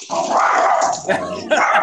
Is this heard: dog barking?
yes